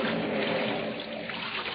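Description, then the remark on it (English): Water laps and sloshes steadily at the shore, a continuous wash of moderate loudness with no voices over it. “One day, Mother Ceres put on the wreath of poppies she always wore, took Proserpina by the hand, and went down to the water's edge.”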